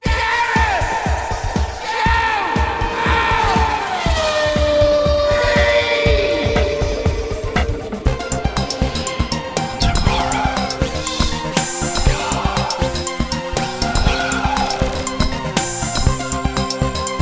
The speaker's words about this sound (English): Hello and welcome to Tomorrow's Car World. We're here at the 1979 Motor Show in Earl's Court. Very busy, very noisy